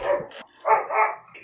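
A dog barks several times in quick succession, short sharp yaps, with brief pauses between them and no one talking.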